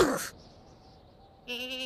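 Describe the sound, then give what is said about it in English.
A baby goat in a cage bleats: a short, breathy burst at the start, a pause, then a high, quavering cry cut off at the end. It is loud, and no one is talking. “It's a baby goat in a cage.”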